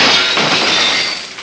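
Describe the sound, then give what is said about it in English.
A loud, bright crash of a glass pane on a sidewalk shattering as a man swinging on a banner smashes through it, followed by a dense spray of tinkling shards that slowly thins out. No voices. “But just when you think it couldn't get any worse, he swings right through the pane of glass on the sidewalk and smashes it into a million pieces.”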